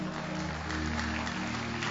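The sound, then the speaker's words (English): A crowd claps steadily throughout, a dense wash of many hands with a low, sustained hum underneath and no clear speech. “Also clap for Mama who is not educated but is raising 5 godly daughters.”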